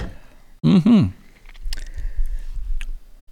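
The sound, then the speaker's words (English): A brief voiced hum is followed by a quiet sip of tequila during a toast, with soft wet slurping and mouth noises and a faint smack. “All right, give it a little sip.”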